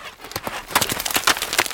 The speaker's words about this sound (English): And the chassid is standing there and watching and waiting. And all of a sudden, he hears a horse and carriage pull up outside of the Beit Midrash.